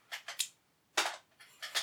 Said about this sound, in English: What was that re-roll for? Because it was the wrong dice. It shouldn't be in there.